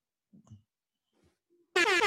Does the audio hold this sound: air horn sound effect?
yes